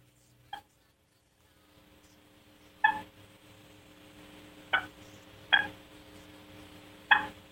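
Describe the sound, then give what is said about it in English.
A wild turkey hen's soft tree putt as she wakes up, imitated on a call: about five short, sharp putts spaced irregularly over several seconds, each a brief clipped note over a faint, steady low hum. “So here's the soft tree putt.”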